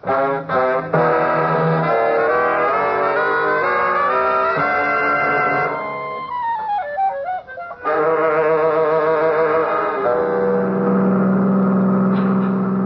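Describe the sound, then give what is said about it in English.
A car engine revs loudly and accelerates, its pitch climbing in steps through the gears, then dips and fades as the car drives away down a drive. No one speaks. “A car just went down the other drive.”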